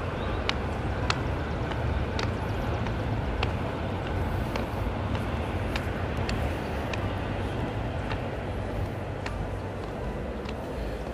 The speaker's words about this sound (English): Okay, so there went that train.